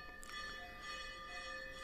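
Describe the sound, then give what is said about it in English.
A temple bell at a temple of the goddess Lalitambika rings with a bright, sustained metallic tone, its overtones lingering and shimmering steadily. It sounds fairly quiet, with no talking. “That's the temple bell at her temple.”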